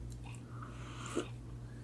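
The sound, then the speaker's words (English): A single quick sip of tea: a short, soft slurp over a steady low electrical hum, with no one speaking. “All right, I'm going to take a little sip of my tea here before we dive in to episode number one.”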